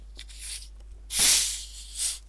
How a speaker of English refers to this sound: Funnily enough, I've got one of the Hungry Jack's Coke glasses, and I'm about to pour Pepsi into it. That's probably a sin. I'm probably going to hell. Anyway, let's crack it open.